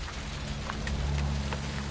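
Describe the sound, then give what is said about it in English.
Steady rain pours down with a dense, hissing wash, scattered with brief drip-like taps and a low rumbling undertone throughout, no voices present. “Oh, here it goes again. Best grab one of Carboot Collins' parasols.”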